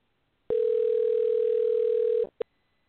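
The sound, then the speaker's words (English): A telephone ringing tone, heard while dialing out a call, sounds as one steady, loud electronic buzz lasting under two seconds, followed by a brief blip of tone, with silence around it and no voices. “I'm trying to dial it. It's maybe it's because I'm on this phone. It won't let me. But, you know, I hear a ringtone.”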